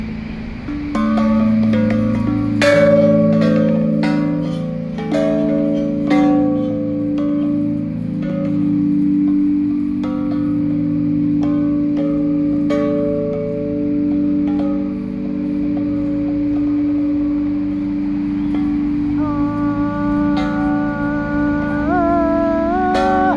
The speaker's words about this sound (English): But either way, here's the bell, and this is the one I can ring. The children rang it, and I recorded them ringing it today. And here's my turn.